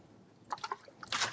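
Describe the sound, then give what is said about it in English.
Someone takes a quick drink of water: a few soft gulping, liquid swallows in a short rhythm, followed by a brief breathy exhale. The sounds are quiet, with no talking. “Oh, water is tasty.”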